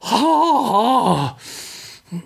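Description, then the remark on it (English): A loud, strained cough with a wavering voiced rasp lasting about a second, followed by a breathy exhale and one short, softer cough at the end. “That was me coughing.”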